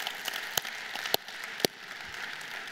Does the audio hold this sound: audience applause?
yes